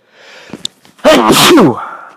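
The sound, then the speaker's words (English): A single loud sneeze in spring, sneezing season, bursts out after a second of quiet, sharp intake of breath, with a voiced, throaty edge before trailing off. “It's spring, and spring has sprung. And that means sneezing season.”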